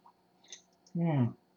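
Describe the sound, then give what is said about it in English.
A few faint wet clicks of a quick sip of tap water, followed by a loud voiced exhale like a refreshed "ahh" after swallowing. “I'm so fired up, I got to get a sip of water.”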